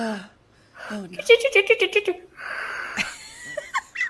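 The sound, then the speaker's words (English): Someone imitates heavy, raspy Michael Myers mask breathing, a drawn-out breathy rasp following a run of quick voiced pulses that sound like stifled giggling. “And there's some Michael Myers mask breathing going on.”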